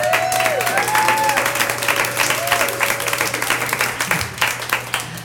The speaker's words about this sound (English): I'm going to hold an applause sign up for that.